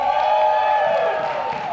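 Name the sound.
audience cheering and clapping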